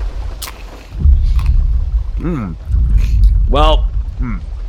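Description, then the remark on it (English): Crunching of thick, hard pizza dough chips, a few loud bites spaced out over a low rumbling background, with muffled hums of a voice while chewing. “These things look pretty thick. Let's see what the crunch factor is.”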